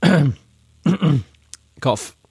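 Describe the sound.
A voice imitates coughing: three short, throaty, exaggerated cough sounds with brief pauses between, fairly loud.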